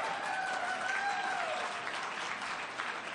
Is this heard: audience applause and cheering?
yes